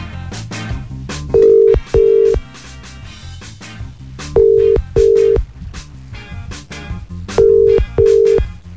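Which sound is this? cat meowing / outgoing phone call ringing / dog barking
outgoing phone call ringing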